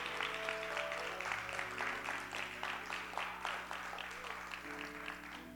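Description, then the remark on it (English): An audience claps hands in praise of God, a dense, steady wash of many overlapping claps lasting several seconds, with faint sustained low tones underneath. “Just real quick, all over the building, can we give God one more hand clap of praise?”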